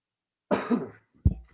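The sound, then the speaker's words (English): A loud cough, a harsh raspy burst about half a second long, followed shortly by a second, shorter throaty cough. No one speaks. “First thing we're doing if we ever get a new studio, installing a cough button on one of these Shure mics.”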